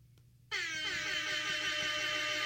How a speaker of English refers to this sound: Oh, that feels so good. Isn't it satisfying? Yeah, that's instant wrap air horn app for iOS devices.